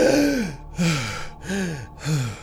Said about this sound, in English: Sarah awakens from the flashback vortex. She gasps for air.